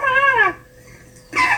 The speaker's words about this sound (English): This is what a squeaking Asian elephant sounds like.